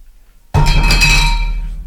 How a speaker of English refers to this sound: That was a coaster.